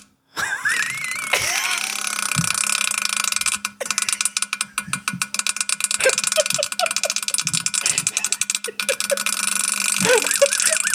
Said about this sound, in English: Listen. It's still going. Tell me that ain't fire. Tell me you can't rap to that. Why did you fart that long?